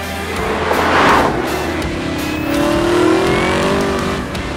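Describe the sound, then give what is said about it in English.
The powerful V8 engine of a 2018 Chevrolet Camaro ZL1 1LE sports car revs hard, its pitch climbing and falling in two surging waves with a deep rumbling roar, loud with no voices. “The 2018 Camaro ZL1 1LE”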